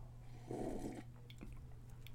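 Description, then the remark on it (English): A single short, airy slurp of someone sipping hot coffee, followed by a few faint clicks and a quiet swallow over a low steady hum. No one speaks. “I'm going to take another sip of this coffee.”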